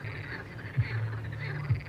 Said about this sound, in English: So I walked home to the Frog Song. It's not often you leave. Wow. It's not often you leave a nightclub to the sound of frogs. That's what's happening right now.